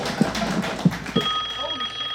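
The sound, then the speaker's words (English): A telephone at a radio station starts ringing partway through, a steady electronic tone that keeps going to the end, following a few dull thumps and muffled background noise. “The phone is ringing off the hook.”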